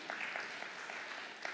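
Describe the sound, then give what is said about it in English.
Soft, scattered golf clap from a church audience, a light patter of claps spread evenly over a second and a half with a few sharper individual claps standing out, fairly subdued overall. “That's a golf clap.”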